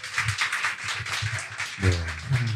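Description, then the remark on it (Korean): A crowd applauds with a steady, dense patter of many hands clapping, fairly loud throughout, and a voice starts talking over the tail end of the clapping. “네, 박수 한번 부탁드립니다.”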